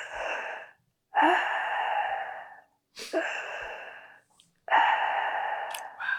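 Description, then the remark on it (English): A voice imitates the heavy, gasping breaths of a woman thought to have died: four long, rasping, airy inhales and exhales with short pauses between, fairly loud, with no words spoken. “And we realized, oh my God, she's still breathing.”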